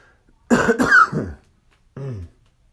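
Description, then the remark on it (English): A fairly loud burst of two or three harsh, congested coughs from congestion, then after a short pause a brief, rough throat clearing. There is no talking. “Some congestion. Not anything too bad. I haven't been coughing very often.”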